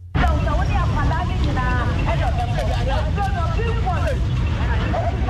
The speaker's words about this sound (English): Sounds from the megaphone here at the bus terminal, where one of the vehicles involved in the crash was driving to. The driver works for a transport company here at this bus terminal.